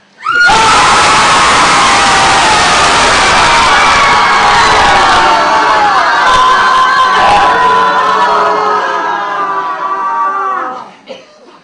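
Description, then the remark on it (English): A group of people, told to connect with their anger and let it out, scream and yell together, one loud, sustained collective outburst lasting about ten seconds before it breaks off and fades. “You connect with some anger now and just let it out. But really voice it. Scream or yell.”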